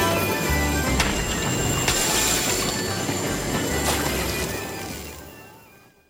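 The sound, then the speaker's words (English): A loud oncoming train rumbles with a steady roar of wheels and metallic squealing, then fades away over the last second or so. No one speaks. “The film opens with 54 schoolgirls holding hands and happily throwing themselves under an oncoming train.”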